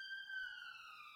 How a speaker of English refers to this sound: Going to sign off with another police siren. There we go.